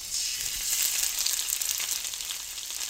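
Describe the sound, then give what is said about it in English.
Ribbons of corn dough, pushed through the holes of a machine and cut with scissors, fry in a vat of hot fat with a steady, dense sizzle, a bright crackling hiss that holds at an even loudness throughout, with no voices. “And he stood there with scissors and cut the ribbons and had them fall into the vat of hot fat.”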